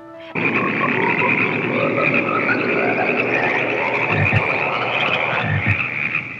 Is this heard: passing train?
no